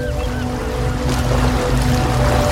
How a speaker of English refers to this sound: Watch out, the sea's coming over the top of the rocks there.